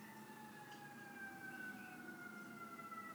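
A steady wailing emergency siren outside, its tone sliding slowly lower as the vehicle passes, over a low traffic rumble with no one speaking.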